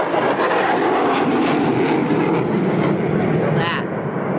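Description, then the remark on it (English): A loud, steady roar of an airplane engine passing overhead at an airport fills the whole stretch, unbroken, with indistinct voices faintly mixed underneath. “People have been arriving left and right, in airplanes and cars.”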